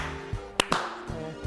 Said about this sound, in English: It made $5 million within the first 3 days. So we slow clap those.